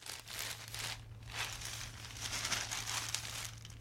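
Newspaper pages crinkle and rustle steadily for a few seconds as someone works on the crossword in the paper, a soft, continuous papery crackle, with a faint low hum underneath and no voices.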